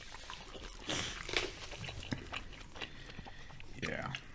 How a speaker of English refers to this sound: A little bite of a french fry. That's good.